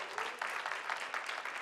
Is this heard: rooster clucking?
no